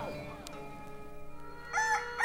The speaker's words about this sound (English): He woke up to the sound of roosters.